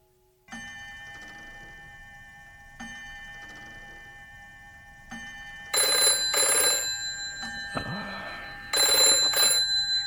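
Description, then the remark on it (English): A telephone bell rings loudly in two long rattling bursts, after a quiet stretch of steady humming tones and faint ticking; no one speaks. “Any time, day or night, if you need my help, just pick up that phone and call me.”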